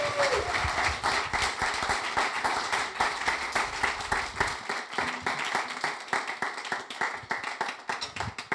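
A crowd breaks into sustained applause, dense overlapping claps filling the space at a steady, moderately loud level for several seconds, thinning slightly toward the end.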